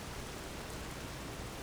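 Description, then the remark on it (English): Steady, dense hiss of torrential rain pouring down in fog without a break, a continuous wash of noise at moderate volume with no voices or other sounds. “I can see the Nirnroot glowing in the fog and torrential downpour.”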